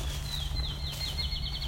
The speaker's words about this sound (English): So there's some field sparrow. Because we're now entering their territory somewhat. An old growth ravine on one side.